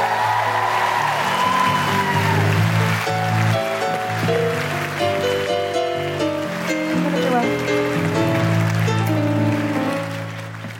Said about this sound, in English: Big round of applause for Sarah Pascoe, Aisling B, Josie Norton, and Steve Alley.